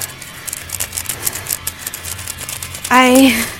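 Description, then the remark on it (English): Rapid, scratchy strokes of a red crayon rubbed back and forth across paper laid over a gravestone to make a rubbing, fairly steady for a few seconds, before a brief voiced exclamation cuts in at the end. “Get out the paper and I'm just, like, scribbling.”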